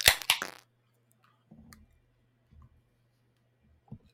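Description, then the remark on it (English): Two sharp metallic cracks snap out back to back as a can of Rotting Earth 2022, a 9.3% double dry hopped double India Pale Ale, is cracked open, followed by a brief fizzing hiss, then a few soft low clunks and taps in otherwise quiet surroundings. “You ready to crack? Yes. 3, 2, 1, crack.”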